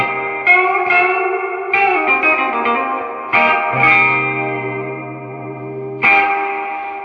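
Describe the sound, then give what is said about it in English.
Electric guitar played through a Deluxe Reverb tube amp with lush reverb, chords struck about every second or two and left to ring out in a warm, shimmering wash, loud with no talking. “Let's go back to this is the deluxe reverb.”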